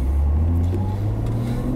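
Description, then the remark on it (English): A car engine drones steadily as the car drives out of the pit lane exit onto a circuit, a continuous low rumble with a constant pitch and no voices. “Okay, so we drive out of pit lane exit.”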